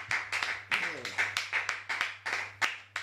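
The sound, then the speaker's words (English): A church audience claps for Jesus during a sermon in a steady, rhythmic run of sharp claps. A brief voice is faintly heard beneath the clapping, and a low, constant hum runs throughout. “Why don't you give Jesus a clap of hands?”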